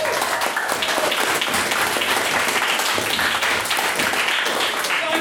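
A crowd applauds steadily, a dense wash of many hands clapping at once, loud and sustained for several seconds with no break in the noise.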